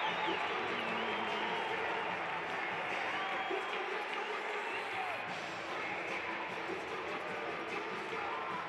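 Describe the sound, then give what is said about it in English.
A big arena crowd at a Utah Jazz game against the Clippers cheers after a Rudy Gobert one-handed follow at the rim, in a loud, sustained roar that barely dips for about nine seconds, with scattered shouts and whistles rising above the dense wash of noise. “And the crowd erupts on that one.”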